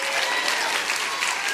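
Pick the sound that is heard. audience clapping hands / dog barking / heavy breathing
audience clapping hands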